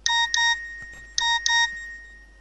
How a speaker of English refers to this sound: The loud sound startled her and the rest of the group. It was her Nokia cellular phone sounding off a message alert.